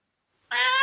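A single cat meow, bright and sustained, breaking in suddenly after a moment of silence and holding steady to the end, with no other sounds around it.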